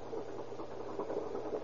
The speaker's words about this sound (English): Still hear that pump? Yes, I hear it.